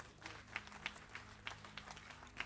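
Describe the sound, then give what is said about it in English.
A group claps together in a steady, scattered burst of applause offered to the Lord, with sharper individual claps standing out over a low continuous hum; no voices are heard. “A clap offering for the Lord.”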